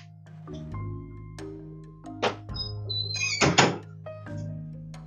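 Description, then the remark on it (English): A door is pushed shut with a couple of solid thumps, the main bang landing near the middle, over a steady low hum with no one talking. “I forgot to close the door. I'll be right back.”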